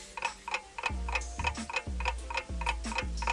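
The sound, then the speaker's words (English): A steady ticking clock counts down 30 seconds for a quiz answer, sharp clicks at a quick regular pace over a deep, pulsing low bass beat, loud like a game-show countdown timer, with no voices. “You all have 30 seconds to name five women that Hugh Hefner may have slept with. The clock starts right now.”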